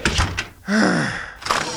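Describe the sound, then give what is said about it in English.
An office door swings and creaks on its hinges, followed by a dull thud as it is shut, fairly loud, with a couple of soft knocks just before. “Look, just come in and shut the door.”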